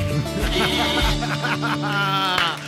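Several sheep bleat loudly, their wavering, quavering cries overlapping one after another in a continuous chorus for a few seconds.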